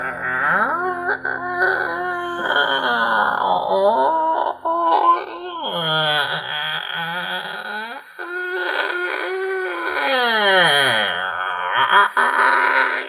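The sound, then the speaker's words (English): A person vocally imitates the door of an abandoned guards tower squeaking as it creaks open, with long, wavering, moan-like squeals that slide up and down in pitch, loud and continuous, broken by a couple of brief pauses. “Arthur hears how bad it's squeaking and it's just like, fucking hell, and just shoves it open.”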